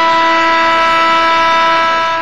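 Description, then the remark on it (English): An NHL hockey goal horn blares in one loud, sustained, steady blast with a rich stack of droning tones, holding for about two seconds before easing off slightly at the end. “That is our NHL hockey buzzer, and we introduced the buzzer about, probably October, November of 2018.”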